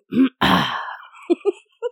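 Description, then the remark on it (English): A person imitates a gorilla's belch: a short low voiced grunt, then a long breathy rumbling exhale, followed by three brief low grunts trailing off. “Diane would actually use those belch sounds to approach the gorillas to let them know that she's okay”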